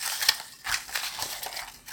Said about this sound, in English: scrambling paper in a bowl